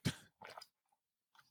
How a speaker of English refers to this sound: Let me take a sip of water. Hang on. Getting a little parched, you know?